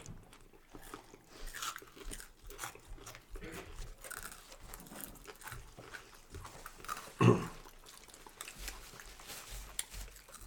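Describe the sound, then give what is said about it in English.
Crisp crunching as someone bites into an egg roll and chews, with a run of irregular crackly bites and one especially loud crunch partway through. “What's the best part of all this food? It's the egg roll.”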